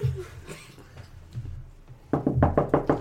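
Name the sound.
knocking on a door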